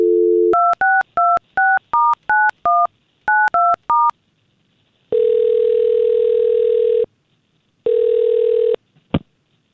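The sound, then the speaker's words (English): A short dial tone gives way to a quick, rhythmic run of about ten touch-tone beeps as a man's phone number is dialed, then two long, steady ringback tones and a final click as the line picks up. “we've got his phone number, and let's try to get a hold of this Alan”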